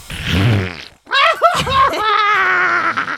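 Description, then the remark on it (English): A loud, buzzy fart sound effect lasts about a second, then after a brief gap comes a long, wavering, high-pitched squealing cry. “Let's cut ahead till the black hole poops him out.”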